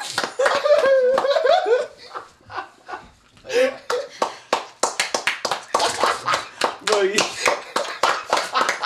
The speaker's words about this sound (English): can you slap your belly button?